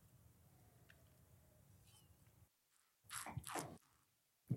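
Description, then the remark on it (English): After a low murmur of background noise and a brief silence, a wet slurping sip of Pinot Noir-based champagne lasts under a second, followed by a small click. “And I'm going to take a sip.”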